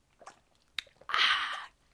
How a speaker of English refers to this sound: Wait. Water break.